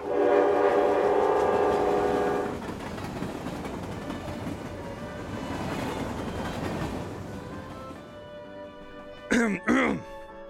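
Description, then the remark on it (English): A train rumbles past with a sustained, loud horn blast at the start, the noisy rolling clatter fading over several seconds, followed by two short sharp bursts near the end. “Welcome to the Dungeon Train or whatever.”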